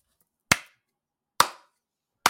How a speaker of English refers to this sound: This is where you clap.